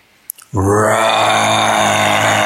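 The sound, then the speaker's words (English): After a couple of short clicks, a person lets out a loud, sustained low growling roar, a rich buzzing vocal imitation held steadily for about two seconds. “Roar.”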